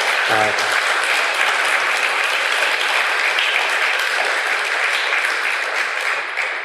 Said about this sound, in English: So usually they say reserve the applause to the end. Both of you guys. I mean, thank you.